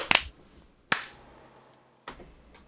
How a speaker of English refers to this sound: All right. Clap sync. 3, 2, 1.